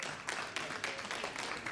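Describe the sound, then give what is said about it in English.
A church audience claps together at a baptism service, a dense, steady patter of many hands with bright crackling peaks, sustained at an even, moderate level throughout. “You can clap and celebrate.”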